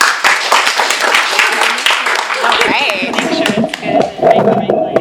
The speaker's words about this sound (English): Let's please give a warm round of applause.